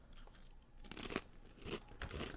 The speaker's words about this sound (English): This chip a little less spicy than the last time you put a chip in your mouth on here?